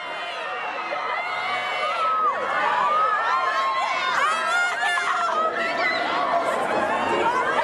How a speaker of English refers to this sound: you get a lot of screaming, crying, fainting teenage girls.